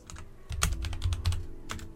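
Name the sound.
dice being rolled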